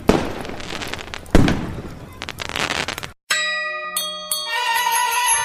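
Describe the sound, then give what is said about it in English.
Fireworks from a massive display in Britain bang and crackle in a rapid cluster of loud bursts, with one especially sharp blast, before the explosions stop and bright ringing chime-like tones take over. “Today in Britain, people celebrate this moment in history and the failure of the plot by lighting bonfires and setting off a massive, impressive firework displays.”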